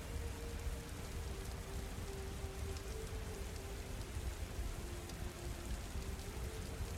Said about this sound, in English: The window is shuttered, but the sound of rain in the streets is still audible beyond its wooden slats.